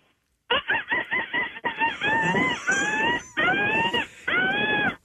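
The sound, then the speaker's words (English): A human voice imitates seagull calls over the phone: a quick run of short, clipped cries rising into several long, drawn-out wails. Loud, with a thin, phone-like tone and no talking. “do you are you known for your seagull impression? Yes, I am.”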